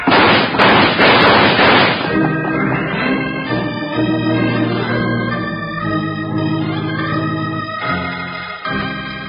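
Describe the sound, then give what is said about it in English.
A rapid volley of loud, sharp gunshots cracks out for about two seconds as characters shoot their way out in the dark, then gives way to swelling music with sustained tones that plays to the end. “Shoot your way out.”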